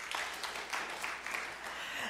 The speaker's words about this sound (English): Last Sunday we did Unbroken. Clap if you had seen Unbroken.